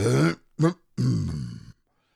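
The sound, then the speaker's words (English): A man's voice acts out a theatrical, impressive cough while reading a story aloud, loud: a gruff first burst, a quick short second, then a longer rasping throaty one, with no words spoken. “Eeyore coughed in an impressive way and began to speak”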